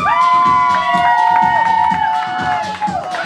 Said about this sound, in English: All right, one more to go! Guys, don't forget to cheer them on now! Cheer them on!